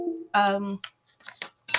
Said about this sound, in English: Sorry, my phone charger is making ridiculous noises. It's gone very musical.